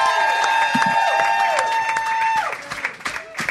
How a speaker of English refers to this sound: Oh, thank you very much. Excellent. Thank you. Hey. Hey. Didn't want that to stop. I was really enjoying that. Yeah. You can keep clapping if you like.